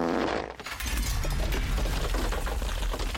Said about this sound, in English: Here comes Big Bad Pig. I'll fart your house down.